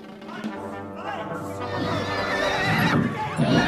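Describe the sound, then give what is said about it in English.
A horse neighs loudly and shrilly, its whinny wavering over several seconds, with hooves clopping and shuffling beneath and a busy, noisy commotion in the background. “Horse man, quickly.”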